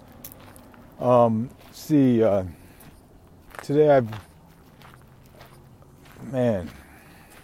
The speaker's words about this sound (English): Out here walking by a little dirt path, so if you hear my feet crunching in the sand, little pebbles, that's the noise in the background.